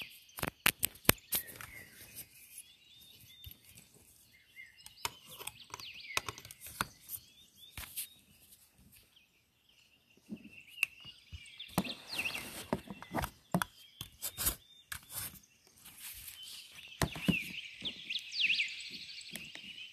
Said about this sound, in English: So we'll chill for a while here. Hang out in nature. Hang out with the birds.